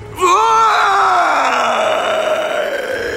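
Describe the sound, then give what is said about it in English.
An old woman gives a loud, drawn-out bellow of pain as her skin blisters and cracks, starting suddenly with a strained, raspy cry that slowly sags lower in pitch and holds for about three seconds without any words. “Gran's skin had started to blister and crack, and the more she bellowed, the worse it became.”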